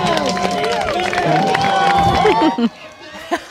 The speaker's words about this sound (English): The crowd cheering on a pair of contestants in the 53rd World Championship bathtub race today.